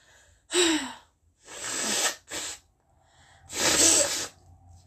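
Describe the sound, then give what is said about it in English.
Someone blows their nose in four loud, harsh, breathy bursts of uneven length, with short pauses between them and the last blast the longest. No one talks. “I know this episode is chaotic, but I need to blow my nose.”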